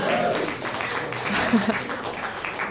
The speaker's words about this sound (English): Deserves a round of applause. It does.